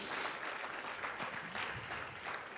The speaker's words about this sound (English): Give him a real good hand clap of appreciation.